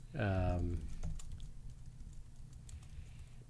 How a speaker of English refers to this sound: Kyle is slowly typing. Slowly. On Google.